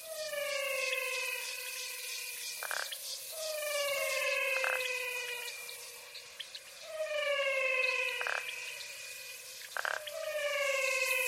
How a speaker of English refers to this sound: Isn't this one of the most beautiful things you've ever heard? But still, I wonder, is it a frog or is it a toad?